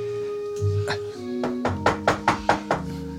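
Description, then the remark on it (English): Five quick, evenly spaced knocks rap on a door that is ajar, distinct, over a steady humming tonal background with a few softer thumps just before. “Come in. Oh, I didn't realize the door was ajar.”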